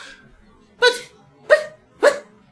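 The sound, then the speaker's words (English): A dog named Shell barks three times in an evenly spaced series, each bark loud and sharp, with near silence between them and no talking. “Shell keeps barking. I think there's a stranger at the door.”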